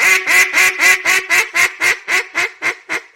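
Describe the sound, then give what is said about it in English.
A duck call blown loud in a quick, even string of about a dozen raspy quacks, each one slightly softer and shorter than the last, with no talking, as the caller practices transitions between calls. “Because all you're doing is learning transitions.”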